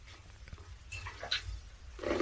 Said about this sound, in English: I've got a dog jealous of another one on my knee here. Yeah, it's all right.